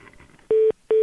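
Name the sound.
telephone keypad dialing tones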